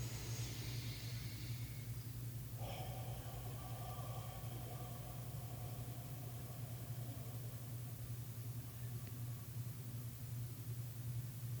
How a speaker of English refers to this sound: Do you feel the peace in the room? The quiet in the room? The only noise was the air conditioner. And it was not an intrusion.